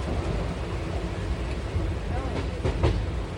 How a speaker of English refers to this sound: I climbed down after some time, freshened up, had one cup of tea, and sat by the window and saw my sister mentally challenging herself to read the names of the station quickly while the train was speeding by.